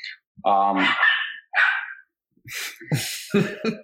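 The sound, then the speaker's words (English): A dog lets out two loud, drawn-out barks, one longer and one short, followed by a person starting to talk. “And the dog's mad that we did not get Lafreniere.”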